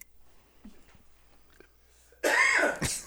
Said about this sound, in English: Jeez. Sorry, I coughed.